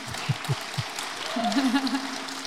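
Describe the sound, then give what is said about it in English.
An audience applauds Newman Theological College with a steady, dense patter of clapping, while a few low thumps sound early and a voice rises over the clapping in the second half. “Yeah, round of applause for Newman.”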